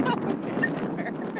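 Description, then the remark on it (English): Steady wind rumble buffets the microphone throughout as the speaker passes through a bluff, a dense whooshing roar with a faint voice partly buried beneath it. “pretty windy through the mic?”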